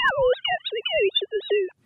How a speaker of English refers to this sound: So that, to most people hearing it for the first time, is rather like ugly clockwork bird song.